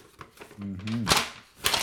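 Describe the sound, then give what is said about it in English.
Two brief, crisp rustles of a printed sheet of paper being handled, with a short hummed vocal sound just before the first one. “It's on actual paper, guys.”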